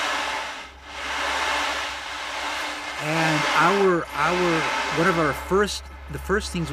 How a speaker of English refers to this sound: So this is a sea drum. I don't know if you could see the little balls, little metal balls inside. And the camera can see these little metal balls. And it sounds like the ocean.